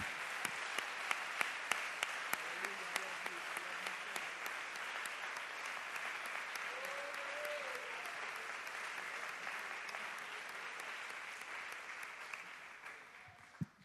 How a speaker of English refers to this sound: When you get seated, would you clap an offering unto God? Would you do that with me?